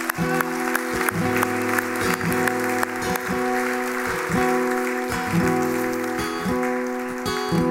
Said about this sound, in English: So let's just applaud the fact that someone's come to faith, shall we?